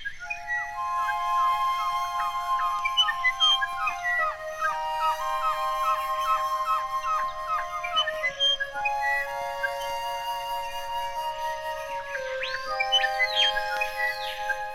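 Layered flutes play sustained and fluttering tones while bird-like chirps and whistles dart through the music, creating an airy, continuous texture with no voices.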